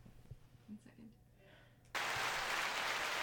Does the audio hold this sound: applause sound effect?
yes